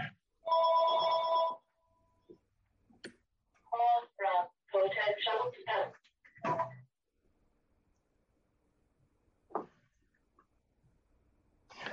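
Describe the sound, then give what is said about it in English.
A cell phone rings once in a loud, trilling burst of about a second, followed by a pause and then several short bursts of a voice speaking. “Sorry about that. I have my cell phone on silent”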